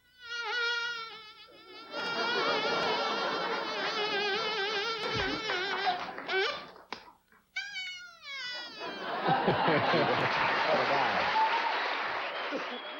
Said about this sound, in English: This was something I created for bugs and bees and that sort of thing. Mm-hmm. It wound up working for Evinrude and, mm-hmm. and the rescuers.